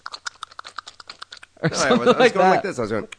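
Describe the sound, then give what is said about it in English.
A quick, irregular string of small wet clicks made with the lips, fairly soft, lasting about a second and a half before a voice starts speaking. “You're not tongue clicking. You're doing this thing with your lip.”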